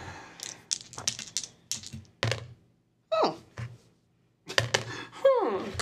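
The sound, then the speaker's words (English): Dice clatter and tumble across a hard surface in several sharp bursts of rapid clicks, with short pauses between rolls and a quick rattling spin settling at the end. “This dice is pleasing through mine ear.”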